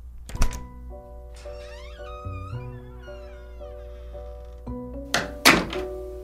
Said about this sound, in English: As soon as I heard the door close behind her, I asked the kid if he wanted to watch TV.